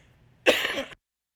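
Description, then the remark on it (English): A single harsh cough from a person getting over a cough bursts out for about half a second, rough and breathy with a throaty clearing quality, then cuts off into silence. “I'm getting over a cough here.”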